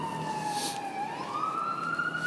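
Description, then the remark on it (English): An arriving ambulance, a hatchback that looks somewhat like a hearse, sounds its siren in a steady, continuous wail that dips slightly and then slowly rises in pitch, fairly loud over a low rumble of traffic, with no one talking. “But from this weird vantage, yeah, so here's the ambulance showing up. I think it's an ambulance.”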